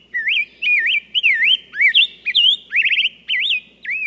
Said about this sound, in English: A bird feeder is a lovely addition to any yard, attracting beauties like this rose-breasted grosbeak.